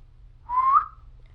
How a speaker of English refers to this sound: One, an outhaling whistle. Go.